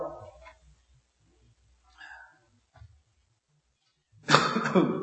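Several short, harsh coughs, the first few small and scattered, then a loud, broad burst near the end. No one speaks.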